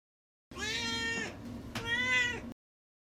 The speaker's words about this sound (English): All right, now it's time for Duarte's Corner, where, of course, my cat Duarte gives his opinions.